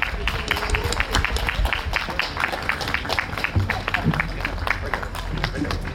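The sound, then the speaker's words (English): An audience at the Winona Poetry Walk breaks into steady applause for the poets, many hands clapping in a dense, continuous patter that holds at an even, fairly loud level for several seconds without fading. “So please come up here once we give you one more round of applause, and we'll get a group photo.”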